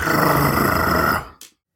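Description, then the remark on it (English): While reading aloud from Harry Potter, a voice imitates the deep, loud purr of the cat Crookshanks, a continuous rumbling growl with a rapid rough flutter that lasts over a second, then cuts off with a brief breathy tail. “And then a deep, loud purring.”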